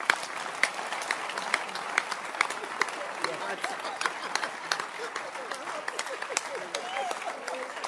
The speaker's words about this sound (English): Then let's clap your hands.